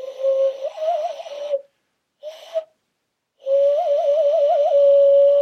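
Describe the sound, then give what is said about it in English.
A person whistles a bird-like call, a steady tone that breaks into warbling trills, in three bursts with a short middle one. No one talks. “So I would say that my most useless talent is that I can do a like wolf whistle.”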